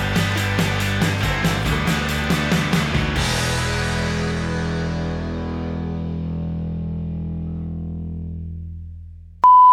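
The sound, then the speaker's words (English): A loud run of quick, evenly spaced electronic beeps sounds for a few seconds, then a sustained synthetic tone rings and slowly fades, ending with one short, clear beep. “So all right, so we'll wait until that stops beeping, and then.”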